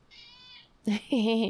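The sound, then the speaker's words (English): A small cat meows: a short, loud mew followed by a longer, drawn-out meow, after a faint high-pitched whine at the start. “I'm in love with this little cat.”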